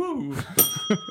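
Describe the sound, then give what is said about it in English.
A single bright bell ding rings out sharply and lingers with a clear sustained tone, while voices talk just before and after it. “I would have rung her bell.”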